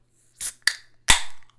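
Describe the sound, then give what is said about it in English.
A beer can cracking open: a soft scrape and a sharp click, then a loud pop of the tab followed by a brief hiss that fades away. No one speaks. “We're cracking it open.”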